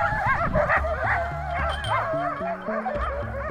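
Several dogs in Ilulissat, Greenland, bark and yip together in a continuous, overlapping chorus, with high wavering whines and howls mixed in, loud over a low steady hum.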